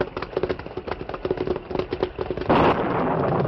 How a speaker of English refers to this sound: Suddenly, a bolt of lightning hit the top of a pine tree near the creek's bank. And splinters, long as Indian lances, flew from the split trunk.